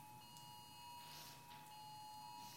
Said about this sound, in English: Somebody's phone going off. That sounds like a... Is that an Amber Alert? Okay, all right. I wanted to make sure we weren't having a tornado bear down on us.